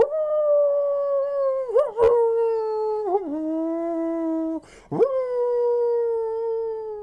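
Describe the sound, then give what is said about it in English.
Wolves howl fiercely from every side in long, sustained, wavering tones, loud, broken only by a few brief dips and yelping breaks before the mournful cry carries on. “Without warning, a storm of howls broke out, fierce and wild, all about the camp.”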